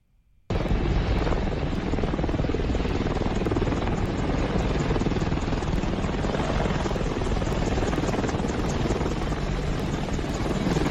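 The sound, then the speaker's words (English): An Apache attack helicopter hovers over an airport runway, clearing people off it so passenger jets can take off; its loud rotor roar is steady and thick with a pulsing chop that fills the whole clip after a sudden start. “That's an Apache attack helicopter moving the people that are on the runway.”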